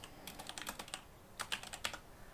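Rapid keyboard typing in two short bursts, a quick run of crisp clicky keystrokes, a brief pause, then another flurry of taps, as someone types "Empire" to look up the game Empire of Sin. No voices.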